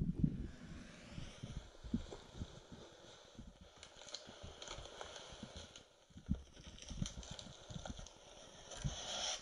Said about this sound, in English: Is he talking or just chewing something? He's opening a box.